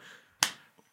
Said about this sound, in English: I walk out into the clearing. Ah! And I clap.